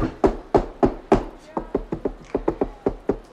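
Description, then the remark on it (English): About a dozen sharp knocks on the wooden door of one of the biggest buildings in town, in a quick, steady rhythm, the first few heavier and more resonant, the rest lighter and evenly spaced, with no voices. “You guys gonna knock on the door?”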